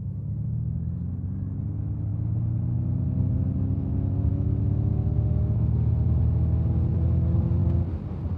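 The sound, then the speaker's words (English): Artificial engine sound of a Mach-E electric car, a fake, digital engine-like sound: a loud humming drone of layered tones that slowly climbs in pitch as if accelerating, then cuts off abruptly near the end, with no talking. “Let's just remind you the artificial sound that's been created for the Mach-E.”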